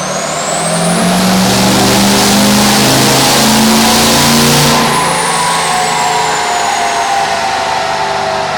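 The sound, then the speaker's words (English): A loud diesel truck engine roars at full throttle on a dyno on Day 3 of the Diesel Power Challenge 2018, pitch climbing steadily with a whining turbo, then easing off after about five seconds into a lower, rumbling idle-down. “So without any further ado, let's get kicked off with the first part of Day 3 Diesel Power Challenge 2018.”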